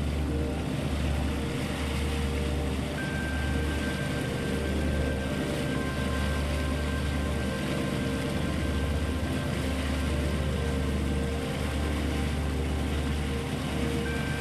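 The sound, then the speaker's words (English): A motorboat carrying four people roars steadily and loudly across the surface of the sea, its low droning engine hum constant throughout, with a broad wash of wind and water noise and no voices. “It was hard to hear anything over the sound of the motor, so the foursome stayed quiet while they roared on the surface of the sea.”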